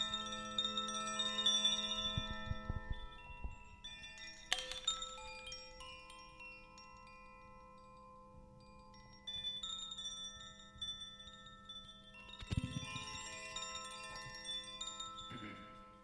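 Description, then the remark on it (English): Metal chimes are rung while cards are shuffled, ringing out in several separate strikes, each leaving long, shimmering overtones that hang and slowly fade before the next is struck. No one speaks. “I can ring them while you shuffle the cards.”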